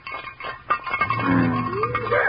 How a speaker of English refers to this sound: Quiet now. I'm going to rattle a frying pan.